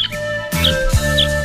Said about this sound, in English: And it offers this call. The semi-palmated sandpiper, Calidris pusilla.